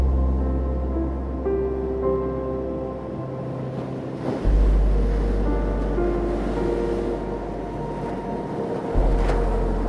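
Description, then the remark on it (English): Ocean waves wash onto the shore with a soft, continuous hiss, swelling and receding in slow surges, while a low, sustained musical drone hums underneath. No one speaks. “Feel the welcoming water gently lap against your body, cradling you and protecting you as you move up and down.”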